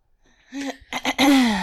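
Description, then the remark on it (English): A loud throat clearing: a short rough vocal burst, two quick harsh catches, then a longer raspy sound that slides down in pitch, with no talking around it. “That's why I had to clear my throat.”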